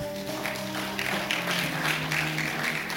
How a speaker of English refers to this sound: Give the Lord a clap.